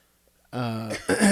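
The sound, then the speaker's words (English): A fairly loud cough in two parts: a rough, voiced hack followed a moment later by a sharper, breathy burst, after a brief silence. “That was my turn to cough.”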